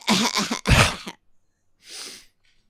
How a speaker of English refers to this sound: Here, let me cough in the mic a little bit.